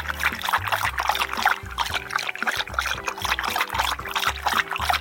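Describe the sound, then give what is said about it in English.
Water pours steadily into a glass, a continuous splashing trickle lasting several seconds, fairly loud, with low droning tones underneath and no speech. “Do you want a glass of water?”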